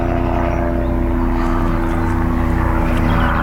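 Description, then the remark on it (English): A helicopter flying overhead outdoors, hidden up in the clouds, drones steadily, its rotor thrum loud and continuous with a low pulsing hum throughout, no voices present. “Who's disturbing my peace out here? This helicopter.”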